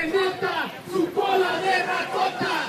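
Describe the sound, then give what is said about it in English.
A large protest crowd chants and shouts together in the street in downtown Los Angeles, voices rising and falling in rhythmic bursts, sustained and fairly loud throughout. “Peña Nieto is running as a new PRI, but this crowd in downtown L.A. was still focused on the one they remember.”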